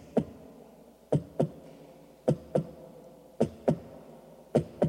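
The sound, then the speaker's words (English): A mother's heartbeat as heard from the womb: steady, muffled lub-dub double thumps roughly once a second over a constant low, whooshing rumble, with no voices. “This soothing rhythm of your mom's heartbeat.”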